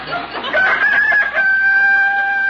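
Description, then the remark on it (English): A rooster crows loudly, its call starting ragged and then stretching into a long, steady, piercing note that holds to the end. “Oh, rooster, you shut up.”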